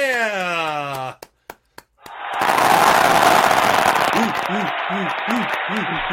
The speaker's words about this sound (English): Hey, can we get a round of applause?